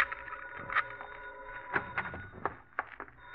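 A telephone rings at a big hacienda overlooking a bay on a foggy night, with a steady, high, sustained tone broken by a few soft clicks and knocks. Nobody speaks.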